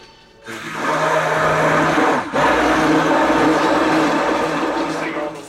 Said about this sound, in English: Okay. Egg, milk. Okay, now we're going to have this blender.